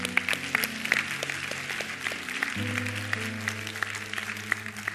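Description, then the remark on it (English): A church audience applauds steadily during a service for several seconds, many hands clapping in a dense, continuous patter while sustained keyboard chords play underneath and shift partway through. “Hey, could we give a hand clap for those?”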